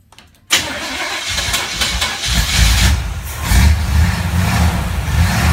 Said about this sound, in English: There's going to be a bunch of car start sounds.